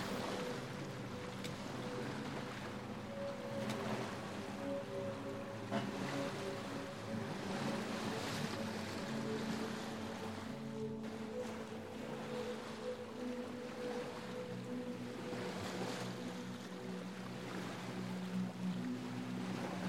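A small boat's bow cuts steadily through inky blue ocean waves, with continuous rushing and splashing water and a low engine drone underneath, fairly loud throughout.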